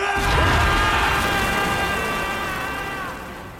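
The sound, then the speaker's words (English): A magical explosion of shadows bursting from General Kerrigan's body as he strains to create a Shadow Fold: a loud, deep whooshing burst with a low rumble, swelling into a sustained eerie, ringing tonal layer that slowly fades over a few seconds. No one speaks. “shadows explode from his body.”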